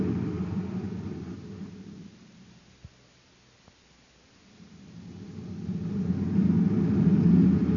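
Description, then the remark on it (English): Corey's car drives along a side road at the deserted east end of a spaceport on Venus; its low engine rumble fades away into near silence, with a couple of faint clicks, then swells back up as another pass draws closer. No one speaks. “Corey's car is the only one on the side road.”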